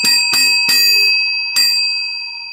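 A bright, metallic bell rings four times: three quick dings, a short pause, then a final ding, each tone ringing on clearly and loudly with no voices.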